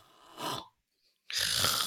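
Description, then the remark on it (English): A person deliberately snores through an open mouth: a rasping snort, a brief pause, then a longer, louder, harsher snore that runs to the end. “What I'd like you to do now is to have a nice big snore through your mouth.”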